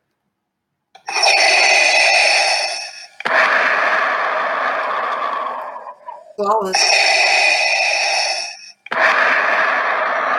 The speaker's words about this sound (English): Darth Vader. Yes. It is Darth Vader, specifically his breathing sound effect.